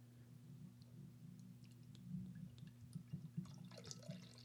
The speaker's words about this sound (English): 10% Baltic Porter is, it's not going to go bad on you quickly. I'm going to pour